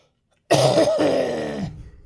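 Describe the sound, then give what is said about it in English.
A single loud cough from a person who has been sick for the last couple of weeks bursts out of silence, harsh and raspy, with a brief catch partway through before trailing off into a rough, throaty rattle. No one speaks. “Ooh, that's what my cough sounds looks like.”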